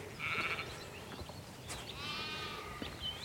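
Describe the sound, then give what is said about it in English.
Two wavering sheep bleats ring out across an open sheep field with large trees, in farmland with a view of the Brecon Beacons, one short and one longer, with a soft outdoor hush and faint breeze filling the background. “Large trees, sheep field.”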